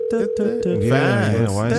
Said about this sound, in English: Why does the ringtone sound like that? Like, why? Who made up the ringtone? I was also curious. That's a good question.